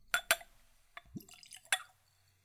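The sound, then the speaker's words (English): Whiskey poured into a small, clean Glencairn whiskey nosing glass: a couple of bright glassy clinks, a brief gurgling trickle with rising pitch, then a few scattered drips, quiet and with no one talking. “I will use a clean Glencairn glass, as I always do. It's a whiskey nosing glass, ideal for seeing a spirit, nosing a spirit, and of course, drinking a spirit.”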